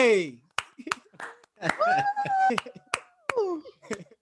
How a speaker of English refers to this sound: applause. Yes. Air horns, all that.